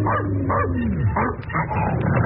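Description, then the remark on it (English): A dog, Blackie, belonging to the elevator operator, barks in a quick series of sharp barks, a few yipping and whiny, over a muffled, narrow-sounding background. “Where's that dog? Probably in the elevator.”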